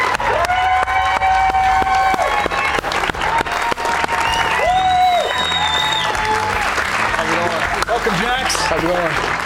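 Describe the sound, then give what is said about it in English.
Steady, dense applause from a show audience welcoming player guest Jaxon Robinson of the Cougars, with scattered whoops and high-pitched cheers, loud and continuous throughout, with some rising shouted voices mixed into the clapping. “Give it up for Jaxon Robinson.”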